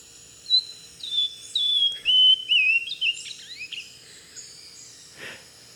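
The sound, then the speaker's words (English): A bird sings a clear, high whistling call, a series of bright descending and rising notes in quick succession, heard alone over faint background hiss, followed by a few softer chirps. “Should we listen to this bird again?”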